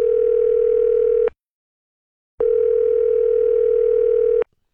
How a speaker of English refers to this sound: So we're going to get her on the phone this morning, and you can hear what she's saying and then what the real lyrics are and why I think it's so funny. We're dialing up my wife